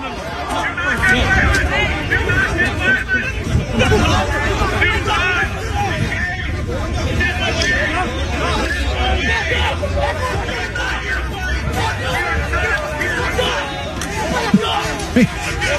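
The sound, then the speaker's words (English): A rowdy crowd of protesting parents clashes with a pro-pride counter-crowd, with many voices shouting and talking over one another in a dense, loud, unbroken din that stays constant over a low background rumble, as punches are thrown. “Well, then the pro-pride crowd showed up, and I want you to listen to what happened because it got ugly, and it got ugly real fast.”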